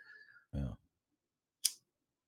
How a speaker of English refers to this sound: What did you just light up? Cigarette? Cigarette. Cigarette, THC, something that keeps my nerves calm.